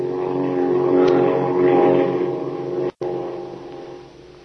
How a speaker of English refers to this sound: The flight in a flying fortress, one of the newest weapons for hemisphere defense, has been a revelation.